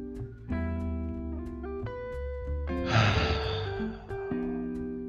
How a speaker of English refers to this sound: So with that, always end with deep breaths in and deep breaths out, relaxing my shoulders.